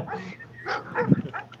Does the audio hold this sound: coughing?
no